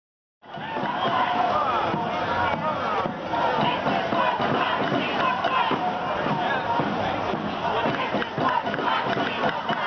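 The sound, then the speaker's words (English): A large crowd of Occupy protesters on Broadway in Lower Manhattan, near Zuccotti Park, chants "We got sold out, the banks got bailed out" continuously, a dense wall of voices that stays loud throughout, with faint thuds of construction pounding and traffic mixed beneath the clamor. “The chant rises over traffic and construction pounding, the noise of Lower Manhattan.”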